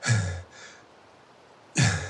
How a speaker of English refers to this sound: Jonas collapsed back into the snow, panting